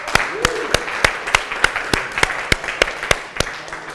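Audience applause: a dense wash of crowd clapping with a sharp, evenly spaced clap standing out about three times per second, holding steady and fairly loud for the whole stretch.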